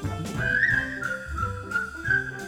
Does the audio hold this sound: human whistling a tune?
yes